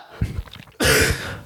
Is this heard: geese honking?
no